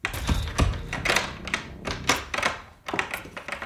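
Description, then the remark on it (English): A locked door is tried and rattled, giving a run of sharp metallic clacks and knocks in quick, uneven bursts, fairly loud, with no voices. “Bingo! A locked door.”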